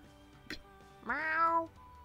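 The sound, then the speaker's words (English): A single drawn-out meow, voiced by a person imitating a cat, rising in pitch and then trailing off, fairly loud, preceded by a brief soft click. “That's not how cats meow.”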